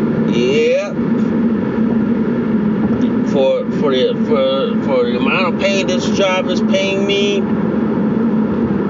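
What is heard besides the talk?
car driving in traffic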